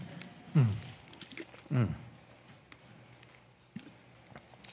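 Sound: speaker drinking water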